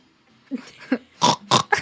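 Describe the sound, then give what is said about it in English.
A band's singer imitates a pig as an icebreaker, starting with two short low grunts, then breaking into three loud, shrill squeals in quick succession, with no talking. “You're going to have to do a little icebreaker, and either you can squeal like a piggy or give us a pig's call.”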